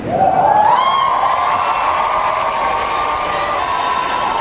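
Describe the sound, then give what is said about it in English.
A big crowd roars with cheering and applause, loud and sustained throughout, with a shrill rising whistle cutting through near the start. “Crowd went berserk.”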